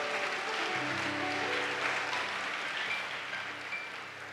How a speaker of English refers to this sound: Clap for all those who gave a donation.